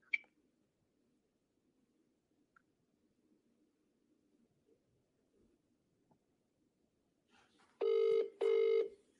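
Quiet background with faint rustling, then near the end two loud, evenly spaced bursts of an outgoing phone ringback tone, each about half a second, clear and close.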